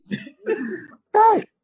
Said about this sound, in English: They'll overcharge me for coughing.